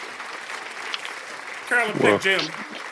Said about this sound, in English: So let's give a hand clap, Coach Carolyn Peck.